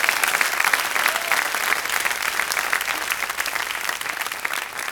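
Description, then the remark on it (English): An audience claps their hands in a dense, sustained burst of applause that stays loud and steady for several seconds, with no voices rising above it. “Come on, clap your hand if you hear what I'm saying to you.”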